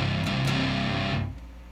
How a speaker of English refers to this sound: Let me turn off the noise gate, and you'll hear it. Immediately it starts to hum.